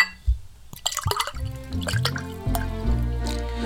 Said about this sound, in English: While the sounds of sherry being poured let us know that it's time to head back to the Christmas kitchen for Mrs. Claus's tasty treats for your holiday fun times.